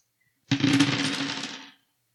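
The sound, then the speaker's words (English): Dice rattle and tumble across a hard tabletop for just over a second, a bright clattering roll for a contested grapple check in a tabletop game, with no talking over it. “His dice yeah, rolls.”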